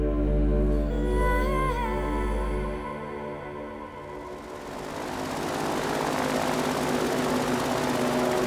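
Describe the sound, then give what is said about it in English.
A loud boat motor drones with a deep propeller-like hum as the boat travels through a swamp, steering around alligators, then swells into a broad, rushing roar as it keeps running steadily with no voices. “Anyone ever tell you you're a terrible boat driver?”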